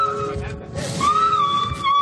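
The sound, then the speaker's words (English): A shrill, sustained scream from behind a curtain leading to the dressing rooms at an ice rink after skating practice, heard from about 150 feet away. It holds a high, slightly wavering pitch for about a second, loud over a low rumbling background, following a shorter cry at the start. “You just hear this sad, horrifyingly yeah. frightening, blood-curdling scream.”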